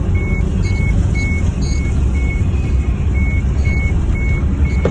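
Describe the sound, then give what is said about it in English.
A combine harvester's engine drones steadily and loudly in a field in the countryside, with a high reversing alarm beeping in a regular, repeating rhythm over the rumble. “A bloke actually went out into the countryside, right, and stood in front of a guy who was trying to use a combine harvester in a field.”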